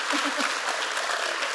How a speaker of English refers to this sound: I mean, I look at leaders like Congressman Jared Huffman, who is here. Yes. Applause for Jared Huffman.